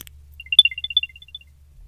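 An Apple AirTag startup chime, heard when the paper strip is pulled out and the battery first powers the AirTag: a quick, bright run of short high electronic tones rising and falling in a playful little melody, lasting about a second, alone over a faint low hum.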